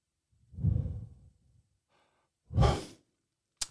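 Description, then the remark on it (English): Two slow, deliberate breaths of four square (box) breathing, a deep drawn breath followed after a pause by a heavy, airy exhale, with no talking and a brief click at the very end. “Four square breathing.”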